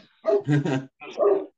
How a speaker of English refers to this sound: Yeah, so we have two big dogs. We get to have them, and they are a great warning system.